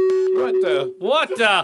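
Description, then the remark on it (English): A phone gives off a steady, mid-pitched electronic beep lasting about a second while a person talks over it; the talking continues after the tone stops. “This phone has got a mind of its own.”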